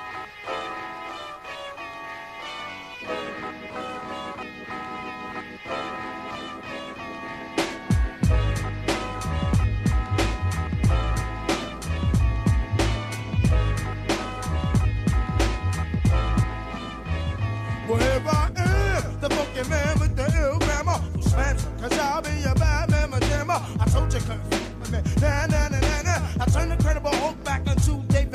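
A hip-hop song intro: a soft melodic instrumental opens, then a booming bassline and steady, punchy drum beat kick in, with the arrangement thickening later. No vocals yet.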